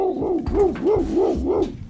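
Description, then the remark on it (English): A man's voice imitates a dog barking at a dog named Scout, making about five quick, rising-and-falling woofs in a steady rhythm, fairly loud, with no other talk. “I thought he would go nuts because most dogs go nuts because I speak dog.”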